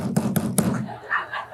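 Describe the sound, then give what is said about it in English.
Three loud, firm knocks on a door, evenly spaced in a quick, forceful rhythm like a police knock, followed by a short quiet stretch. “Not cool, man, because they knock on a door a very specific way.”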